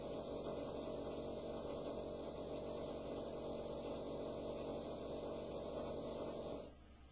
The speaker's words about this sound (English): Let me know when you're done down there, asshole, okay? And you know something? This is perfect for the pool, which I'm going to give you in a second, as soon as this drilling asshole down there on the second floor cuts the crap.